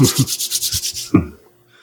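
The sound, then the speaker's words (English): Hands rub briskly together in about nine quick, rhythmic strokes, a dry, hissing friction sound, ending with one firmer rub before falling quiet. “It just goes to him rubbing his hands.”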